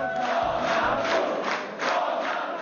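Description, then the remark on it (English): A large crowd of supporters in Poland roars and chants a party leader's name together after election exit polls, a loud, sustained wash of voices swelling in rhythmic bursts with no single speaker standing out. “Crowds of supporters chanted his name, and even though his party looks only to have placed second in the vote,”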